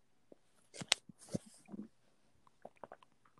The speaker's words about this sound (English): Sorry, taking a sip of my coffee and bongs and brunch.